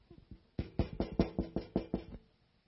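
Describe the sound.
A rapid run of about eight firm knocks in a steady rhythm, fairly loud, like knuckles rapping on a door, imitating a knock at the door, with no voices.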